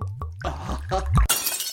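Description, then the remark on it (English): A glass goblet, a wedding gift, shatters at the White House with a loud, bright crash, scattered tinkling shards ringing out briefly after a few low thumps, with no talking. “Horribly sorry. I hope that goblet wasn't a family heirloom's.”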